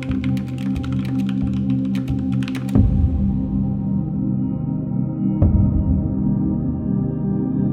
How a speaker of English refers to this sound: I found that it typed faster than my old one, at least. Eventually, I adjusted to typing with just the machine hand.